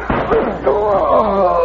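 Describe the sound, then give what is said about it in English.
A single heavy thud of a man's body slamming into a locked door as he tries to break it down, loud, followed by his strained, groaning voice. “I'm trying to break this door down.”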